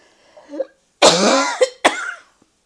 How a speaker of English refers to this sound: I'm sorry to cough. I don't know why I cough.